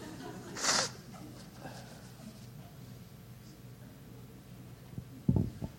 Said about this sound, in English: I'm glad these tissues are here, actually. Pardon me. Just turn around and not watch me blow my nose.